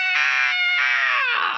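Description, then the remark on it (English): A man belts out a loud, piercing, high-pitched scream like a heavy metal singer, in two sustained bursts with a brief break, the second one trailing off into a harsh, raspy edge. “I had to do the scream.”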